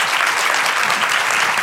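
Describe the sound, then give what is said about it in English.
A room full of people clapping steadily for the first person willing to share, a dense, even wash of applause that stays loud throughout without any voices breaking through. “So first, a big round of applause for the first person willing to share.”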